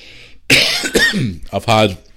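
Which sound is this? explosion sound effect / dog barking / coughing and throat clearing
coughing and throat clearing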